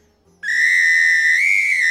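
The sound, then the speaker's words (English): A loud, shrill whistle resembling a samba whistle, with several holes and worn on a necklace, blown in one sustained blast, its piercing tone stepping slightly higher partway through, with no talking over it. “It's like a samba whistle.”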